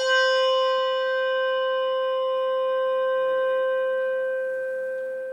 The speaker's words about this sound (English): Malmark bell, no tang.